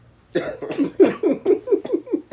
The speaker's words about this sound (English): Yeah, forgive me, I'm a little under the weather. So. A little? I'm coughing up cold and everything.